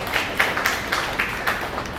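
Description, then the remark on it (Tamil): An audience applauds, a dense wash of many hands clapping with a slight rhythmic pulse of louder bursts, steady and moderately loud throughout, with no voices over it. “அதோ ஒரு கைத்தட்டுங்கள் போகும்.”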